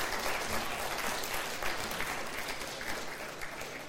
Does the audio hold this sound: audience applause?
yes